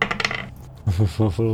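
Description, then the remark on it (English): A quick, bright clatter of new sparkly dice tumbling and rattling across a hard tabletop, settling within half a second, followed by a few short low voiced sounds. “My new sparkly dice by Sky Garden Creations.”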